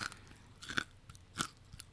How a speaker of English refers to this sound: Okay, now I'm going to eat it. It's very crunchy, so here we go.